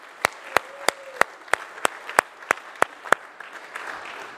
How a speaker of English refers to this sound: Give him applause.